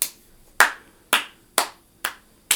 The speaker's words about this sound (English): I honestly thought I could give you a slow clap.